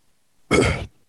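A single short, breathy, inadvertent yawn with a low voiced groan, loud and abrupt, lasting under half a second before cutting off into quiet. No one speaks.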